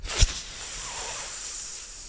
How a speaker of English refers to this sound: Yeah, I've been using a fidget spinner this whole time, guys. Sorry. You yelled at me last time I wanted to use it. You're like, don't use it. They'll hear it.